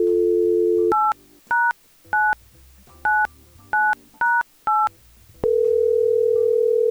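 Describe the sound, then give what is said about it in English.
A steady telephone dial tone breaks into seven quick, evenly spaced touch-tone beeps as a number is dialed, then a new continuous tone sounds, all clear with no voices. “Let's try and get him on the phone.”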